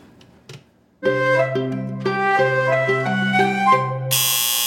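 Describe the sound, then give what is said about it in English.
A kitchen timer, set while a dish roasts in the oven, goes off with a loud electronic alarm: sustained, buzzy tones stepping through several pitches like a short tune, alone after a moment of quiet, ending in a harsh burst. “Set my timer.”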